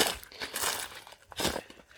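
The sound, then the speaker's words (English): Dry leaves crunch and crackle on a forest floor littered with leaves at the end of the winter, in the dry season, in irregular, brittle bursts, a louder rustling surge near the middle and another toward the end, with no voices. “So the forest is really littered with all these leaves.”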